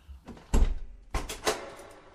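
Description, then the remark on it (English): A door opens with a heavy low thud and several clattering knocks of the latch and wood over two seconds; no one speaks. “Open the door and come in.”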